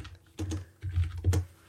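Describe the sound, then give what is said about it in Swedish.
Several quick keystrokes on a computer keyboard, clicking in short uneven bursts, fairly clear, with no talking over them, as someone types a search into Google. “Vi googlar så här och hoppas att vi får får en träff.”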